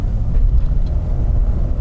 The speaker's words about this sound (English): Oh, wow. Over a triple set of railroad tracks right off the bat. Beautifully smooth. So this has the Bilsteins on it, so you get the Bilsteins from the factory.